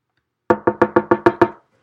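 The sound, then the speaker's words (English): A quick burst of seven sharp, evenly spaced knocks on a door, fairly loud, with no voices around them and silence before and after. “Somebody's knocking at your door.”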